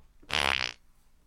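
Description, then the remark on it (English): A single short, buzzy, wet-sounding fart-like burst meant as a fart and ejaculation sound, lasting about half a second, loud, with near silence before and after and no talking. “That's a fart and jizz sound.”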